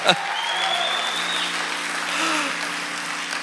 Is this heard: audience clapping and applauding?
yes